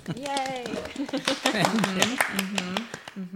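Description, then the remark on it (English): Quick hand claps ring out in a fairly steady burst of a dozen or so, over voices talking and cheering throughout. “And he, oh yes, clap, yes. Yay!”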